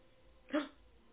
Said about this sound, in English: That was a little bit of aggressive growl.